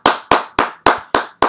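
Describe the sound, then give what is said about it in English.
Brief applause for women's sports from a single pair of hands: six sharp claps in a steady, even rhythm, loud and crisp, with no voices. “So let me give one more round of applause for women's sports.”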